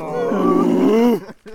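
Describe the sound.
A man's voice imitates a constipated donkey: a long, strained, groaning bray held for over a second, harmonic and gravelly, ending in a short grunting catch.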